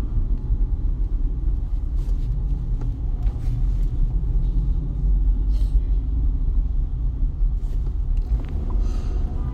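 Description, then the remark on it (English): Steady low road rumble from inside a car moving through traffic in the rain in Houston, a continuous engine and tire drone with faint intermittent clicks and rattles, no one speaking. “And it looks like there's either a traffic light out or there's a wreck somewhere.”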